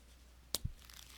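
A single quick papery flick of a book page being turned, followed by a soft low thud and faint rustling. Quiet, with no voices.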